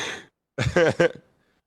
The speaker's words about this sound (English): Wait, who just audibly gasped?